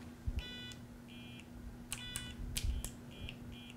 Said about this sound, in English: So it's very much like a Simon Says game. It gives you a beep, and you have to repeat the pattern. So not only does it light up the NeoPixels, but also gives you a sound effect